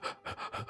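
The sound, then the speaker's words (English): Rapid, breathy gasps for air from a person who is super excited, about four quick heaving breaths in under a second, fairly loud with no talking. “When I edit a lot, when you get super excited, you start gasping for air.”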